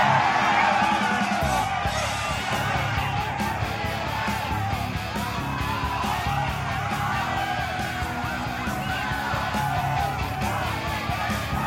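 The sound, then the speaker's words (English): A large crowd roars and cheers continuously at the LIV golf tournament as Donald J. Trump tosses out red hats, with yells and whoops rising out of a dense, steady wall of noise that stays loud throughout. “Well, that's the roar of the crowd as Donald J.”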